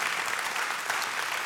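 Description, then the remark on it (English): A steady wash of audience applause, dense and even throughout, with many hands clapping together into a continuous crackling roar and no voices standing out. “We can just applaud that kind of story, right?”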